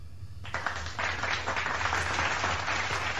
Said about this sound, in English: You gave me a golf clap.